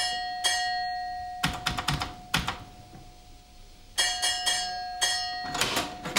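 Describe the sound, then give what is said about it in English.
A railway signal box bell tapped out in code to the signalman at Arley, telling him the train has arrived safely: sharp metallic strikes in short bunched groups separated by pauses, a steady bright ringing tone hanging underneath throughout, with no voices. “I then tap out the code to the signalman at Arley to tell him the train has arrived here safely.”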